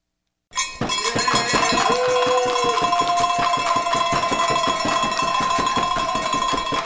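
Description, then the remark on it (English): A bell rings continuously with rapid, repeated metallic strikes, its bright, sustained tones overlapping into a loud, steady clangor after a brief moment of silence. No voices are heard. “Well, where I am, every time the bell rings,”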